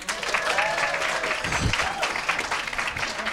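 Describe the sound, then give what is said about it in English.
The audience at the comedy show Stand Up on the Spot claps steadily, answering who has never seen the show, in a dense, continuous wash of applause, with a few whoops and cheering voices rising above it throughout. “I'm Jeremiah Watkins, and by round of applause, who has never seen this show before?”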